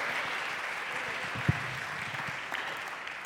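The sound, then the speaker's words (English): A church audience claps for a Scripture reading in a dense, even wash of applause that holds at the same level throughout, with one sharper clap standing out midway. No one speaks. “That deserves a round of applause, and well done.”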